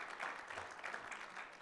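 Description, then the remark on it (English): A church audience clapping together as a clap offering to the Lord during a sermon, a dense, steady patter of many hands at moderate volume, with no voices over it. “Let's give the Lord a clap offering real quick.”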